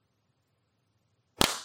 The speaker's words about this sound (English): We got to clap. We do have to clap.